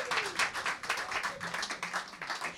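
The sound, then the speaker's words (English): A small audience claps steadily for a couple of seconds, the sharp, bright hand claps coming in a quick, fairly even rhythm at a modest volume, with no one speaking. “Let's give them another yes. round of applause.”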